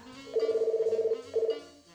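A telephone rings with a fast, warbling electronic trill: one long burst, a brief pause, then the start of a second ring, clear with no talking.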